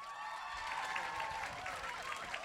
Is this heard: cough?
no